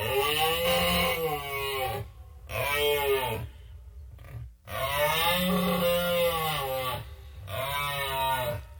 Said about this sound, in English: That is a moose, and moose are big. They are a New World member of the deer family. It's the largest and the heaviest of the deer family.